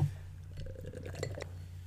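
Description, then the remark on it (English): A drink is poured into a glass: a short, gurgling splash with a few light clinks, over a steady low hum of background noise. “That is a horrible pour.”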